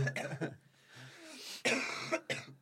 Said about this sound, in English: I'm going to cough. It sounds like I'm going to cry.